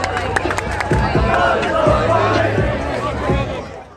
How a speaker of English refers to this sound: In regards to the Fuck Joe Biden movement, it's actually quite funny because these are large crowds, probably filled with Democrats and independents, who are also going along with the chant.